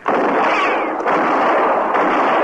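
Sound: gunshots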